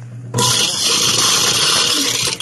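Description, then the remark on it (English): A garbage disposal switches on abruptly and runs with a loud, steady grinding roar over a low motor hum, holding constant for about two seconds with no voices. “ASMR, dishwasher, and disposal sounds.”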